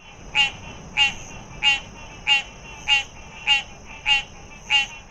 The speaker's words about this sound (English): Those tree frogs you hear in the background are an example of his work, but he does a lot more than that.